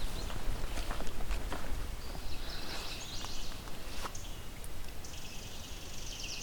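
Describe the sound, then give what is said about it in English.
Steady crunching footsteps on a trail, with a male common yellowthroat's annoyed chattering calls and a faint high buzzing in the background. “Sounds like an annoyed common yellow throat. Yep, it's a male.”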